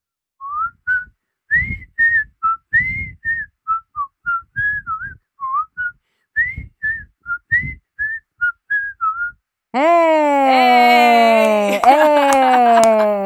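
Someone whistles the bright, bouncy theme tune of The Andy Griffith Show, a quick run of short clipped notes, and then a loud, sustained vocal outburst cuts in at the end.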